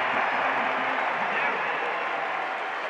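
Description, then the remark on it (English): A big arena crowd at a Jazz playoff basketball game roars and applauds after O'Neal flies in to save the ball out of bounds, a dense, steady wash of cheering that holds at full strength for a few seconds, with faint voices blended into the noise. “Crowd's gonna love that.”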